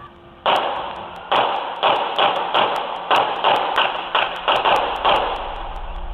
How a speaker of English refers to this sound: You get the bang, bang, bang, and then you get more of a tick, tick, tick. That's a different gun being fired. Shell casings found at the scene confirmed the suspicions.